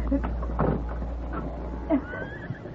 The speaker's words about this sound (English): I'll open the gate.